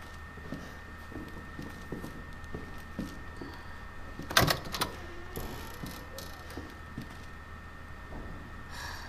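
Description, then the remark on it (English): Faint metallic clinks of pipes in a house tick at a loose, irregular pace over a low steady hum, then one sharper, louder clank rings out near the middle before the quiet ticking resumes. “It's like clink, like pipes clanking, kind of.”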